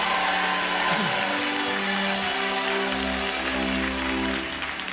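A crowd claps and cheers continuously for the full five seconds, a dense, steady roar of applause with sustained musical tones humming underneath.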